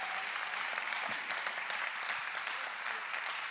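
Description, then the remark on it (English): Steady applause from a group of people for a young boy reciting his lines from a Christmas play, a dense, even patter of many hands clapping at constant loudness for a few seconds, with no one speaking over it. “He needs a hand clap for that one, guys.”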